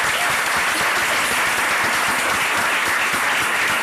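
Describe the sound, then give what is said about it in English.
Steady audience applause for a research assistant who organized the event, many hands clapping at once, a dense crackling wash of claps that holds at a fairly loud, even level throughout without any voices over it. “who put all this together and definitely deserves a round of applause.”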